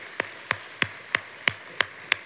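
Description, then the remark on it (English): Hands clap in steady unison as a hand clap of praise for the Lord at Shannon Oaks, seven sharp claps at an even, brisk rhythm, moderately loud with quiet gaps between them. No one speaks. “Hey, let's give the Lord a hand clap of praise for his goodness.”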